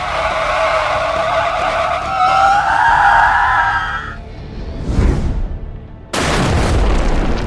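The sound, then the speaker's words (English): A long, loud screech of skidding tires lasts several seconds as a car plummeting down a shaft hits the brakes just before the basement, then a heavy crash follows and a second sudden, roaring impact with crunching debris rings out loud. No one speaks. “just before we got to the basement, Carface hit the brakes”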